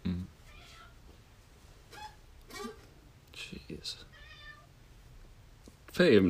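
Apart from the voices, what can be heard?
cat meowing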